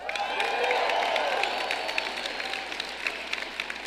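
An audience claps steadily in a dense, continuous wash of applause, with faint cheering mixed in; the clapping holds throughout and eases slightly toward the end.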